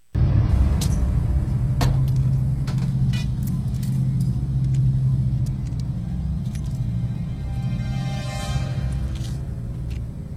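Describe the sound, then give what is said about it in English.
A heavy truck engine rumbles loudly and steadily for the whole stretch, a deep low drone with a few sharp clicks and rattles scattered over it, and no voices, as the truck accelerates toward a phone booth, hits it and goes through a wall. “the truck accelerates towards it as well. She picks up the phone as it rings, and at the same time the truck hits the booth, obliterates it, goes through the wall”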